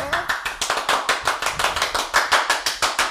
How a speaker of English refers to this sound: Oh, man, that's a fast clap. We just got the dog riled.